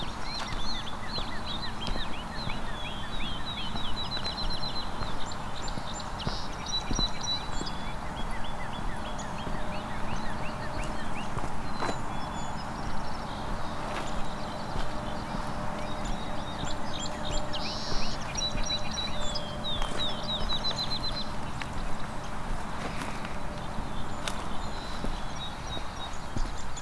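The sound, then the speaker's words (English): A dense chorus of many birds singing at once, with overlapping high chirps and trills running steadily over a constant rustling background, and no single song standing out. “As you can hear, there's kind of too many birds singing to point them out easily.”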